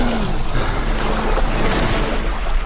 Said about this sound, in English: Just then, another steel door opened. The water rushed out of the chamber.